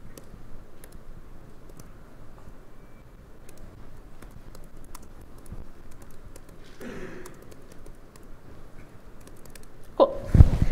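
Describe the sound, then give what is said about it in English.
Irregular, fairly quiet clicks of keys being typed on a computer keyboard, sporadic taps spread across the whole stretch with a brief louder clatter near the end, no voices. “Ah, my typing is so bad. This is what happens.”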